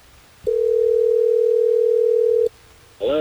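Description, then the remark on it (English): A phone rings on the line: a single steady two-second ringback tone, clear, then a short pause before a voice comes on as the call is answered. “Are you ready for us to get him on the phone?”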